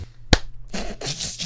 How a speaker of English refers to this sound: We clap on go. Okay. So I'll do 3, 2, 1, and then when I say go, then you clap, okay?